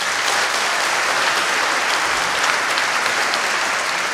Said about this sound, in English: So, if you think Donald Trump would beat Bernie Sanders in a presidential election, please clap now.